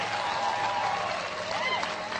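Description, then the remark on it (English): Dense, steady audience applause fills the whole stretch, a continuous wash of many hands clapping at a fairly loud, even level with a faint murmur of voices underneath. “Get old man a round of applause.”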